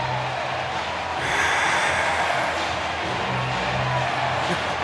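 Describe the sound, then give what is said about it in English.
A baseball stadium crowd at Wrigley Field roars after Christopher Morel's home run, the Cubs' third of the inning, in a dense, continuous wash of cheering that swells louder after about a second and stays strong to the end, with a low steady hum underneath. “You got to love when Pat Hughes tell you to listen to that crowd because you know things are rocking at Wrigley Field.”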